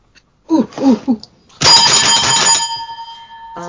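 A few short vocal bursts, then a single loud strike of a hand bell whose bright metallic ring sustains and slowly fades over about two seconds, close to the microphone.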